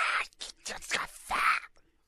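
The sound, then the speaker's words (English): A voice imitates a choking cat with a string of harsh, breathy hacking and hissing bursts, fairly loud, ending in a longer raspy gag before falling silent. “Like a choking cat.”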